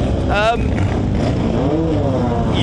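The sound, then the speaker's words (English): Racing car engines, among them classic touring cars and Formula One cars, fire up, roar and rev, their pitch climbing in short bursts over a steady loud rumble, with a crowd murmuring underneath. “because some of them are going to fire up.”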